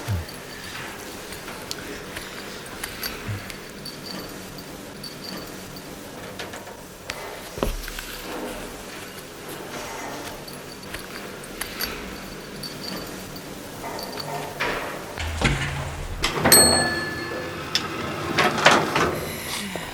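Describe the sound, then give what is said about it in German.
A steady mechanical hum of an elevator in motion, going to the 10th floor, with scattered clunks and rattles, then a louder burst of scraping and clattering near the end as a sliding door opens. No one speaks. “Oh, hoffentlich bleibt das Teil nicht hängen.”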